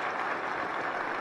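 A brief stretch of sparse, polite golf-clap applause from an audience after Secretary Lloyd Austin introduces the President of the United States, a steady, even patter of clapping with no one speaking over it.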